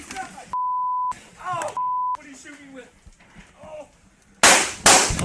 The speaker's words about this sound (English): So these two guys are playing, and then listen to the background. An inset. And there's the gunshots. And the game shuts off.